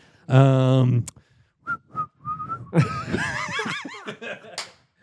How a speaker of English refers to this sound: came up with a cool new way to vamp. He just started whistling.